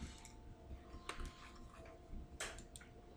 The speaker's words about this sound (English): So yeah, the idle clicking of clocks and whistling and hissing of water and steam.